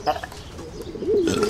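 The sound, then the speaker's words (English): Soft, low cooing of a pigeon or dove in a public park where birds are being fed, a smooth rising-and-falling call near the end, with faint background murmur and a brief voice-like sound at the start. “See, I'm just appreciating the day, same as you, same as these birds.”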